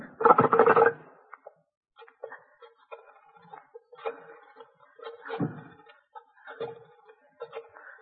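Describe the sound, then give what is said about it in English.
Someone clumsily dials a telephone: a loud clatter at the start, then scattered clicks and rattles of the dial at uneven intervals, with no talking. “My finger's like a thumb. 7 9 0 8 No, I can't dial this thing.”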